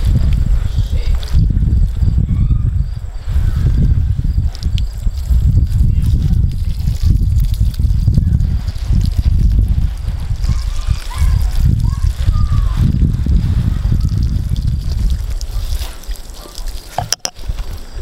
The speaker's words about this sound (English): I guess I can water a little bit. Let me find my little pail.